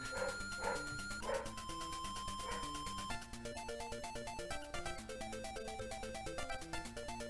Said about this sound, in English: The dog's not actually in the song. That was in the house. Yeah, just totally ignore that. You never even heard it.